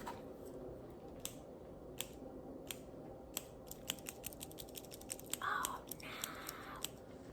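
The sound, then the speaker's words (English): A mechanical pencil writing on paper: irregular sharp taps and clicks, then a brief stretch of soft scratching strokes, all fairly quiet with no voices. “I found my writing utensil. It's a mechanical pencil.”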